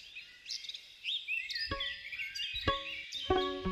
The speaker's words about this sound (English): mic up a bunch of trees and bushes where he knew songbirds liked to sing at dawn